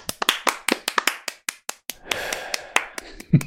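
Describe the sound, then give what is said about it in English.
A quick, uneven run of sharp hand claps, a dozen or more crisp smacks, followed by a rougher, noisier stretch with a few scattered claps and a louder final one. “Let's do some clapping.”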